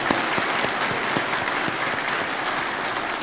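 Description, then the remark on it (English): An audience applauds in a steady, dense round of clapping, loud and continuous throughout with no voices standing out. “So let's give him all a round of applause.”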